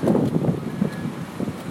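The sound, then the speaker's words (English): Steady wind gusts buffet the microphone outdoors on a windy day in St. Paul, a continuous low rumbling roar with brief swells, loud throughout. “A nice windy day on universities in St.”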